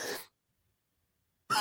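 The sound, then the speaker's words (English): Two harsh, breathy coughs burst out, one at the start and another after a silent pause of more than a second, with no talking. “Man, I'm getting a coughing spell here.”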